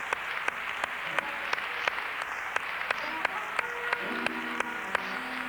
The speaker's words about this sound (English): Are you really thankful to God for that today? If you are, let's give the Lord a hand clap of thanksgiving. God, we thank you today.